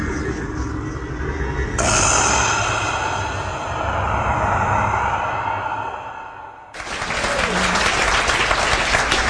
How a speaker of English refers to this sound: That applause is for our guest, Tim Flannery, who's in the house.